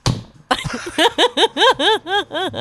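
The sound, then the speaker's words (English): A single sharp hand clap, used as a sound sync marker, snaps out after a brief murmur, followed by a run of rhythmic, rising-and-falling bursts of laughter. “And then I clapped when she clapped.”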